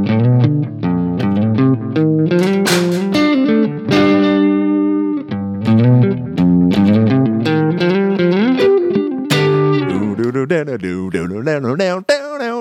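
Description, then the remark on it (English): An electric guitar riff played without distortion, with a fairly clean tone, ringing chords and single notes played loud, ending with wavering, vibrato-laden notes and no voices. “I think it sounds so much … if I play it without distortion, you know.”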